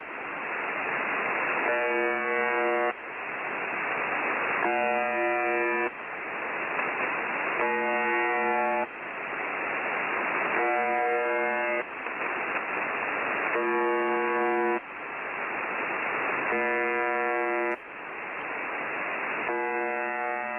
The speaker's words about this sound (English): Do you happen to have an example or a sample of that, the buzzer station?